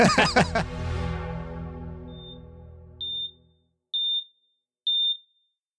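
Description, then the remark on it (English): A loud, rich tone swells and fades out, then three short, high electronic beeps sound one after another at an even, steady pace against silence. “The three of you are awoken by the sound of three steady beeps.”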